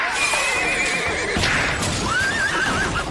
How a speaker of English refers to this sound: Saturday night in Toronto, after the Maple Leafs won the series against the Tampa Bay Lightning, a drunk man was arrested for slapping a police horse on its hind quarters. We've recreated what that might have sounded like.